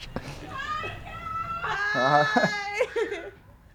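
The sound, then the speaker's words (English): A woman screams in a string of high, strained shrieks that waver in pitch, building to a loud, sustained cry in the middle before breaking off into shorter yelps. “I hope that caught her screaming.”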